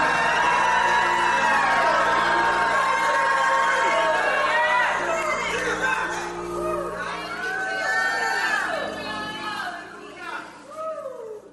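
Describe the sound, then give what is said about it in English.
A large audience jumps up and erupts in loud, sustained shouting and whooping, many excited voices overlapping in rising and falling cries without letting up. “If that's you, jump up and shout like you never shouted in your life.”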